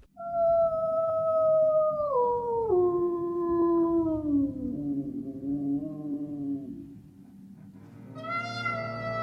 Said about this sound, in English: this version has a voice of an Alaskan tundra wolf. The wolf actually starts the song, and the other musicians join in.